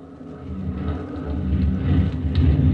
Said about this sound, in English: That landing strip came out of nowhere. Just all of a sudden, there it was. The plane bumped the ground and rolled in. But we kept the motor still running in case of a Jap trick.